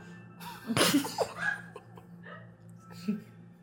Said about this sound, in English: Bless you.